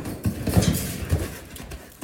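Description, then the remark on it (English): Heavy hooves of a wild horse thud and scrape in an irregular, frantic scramble as it runs and thrashes around, a few loud stamps standing out over a rough, restless background of shuffling and movement. “He just ran and thrashed around until he was lathered white with sweat and fear.”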